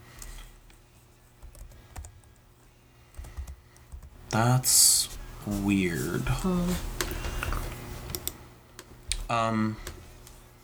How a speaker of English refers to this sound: Keep typing.